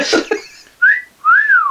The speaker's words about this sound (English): Do you want to whistle a bit louder?